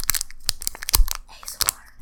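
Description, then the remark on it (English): Crisp crunching and crinkling of stiff cardboard solar eclipse glasses that a dog has chewed, leaving only one lens, a quick run of irregular snaps and rustles over about two seconds, with no voices. “We still have the glass to them. Not anymore. Our dog just bit him.”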